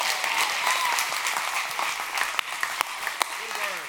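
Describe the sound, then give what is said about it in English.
An audience applauds as an ovation to God during a sermon, in a steady, dense wash of clapping that holds for several seconds, with a few sharper claps popping out and faint voices rising beneath near the end. “Come on, if you believe it, clap your hands. Give God a great ovation today if you believe this word I'm preaching to you.”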